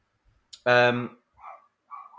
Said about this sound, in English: Anyone hear that dog? Can you sort that dog out? Can you sort that dog out?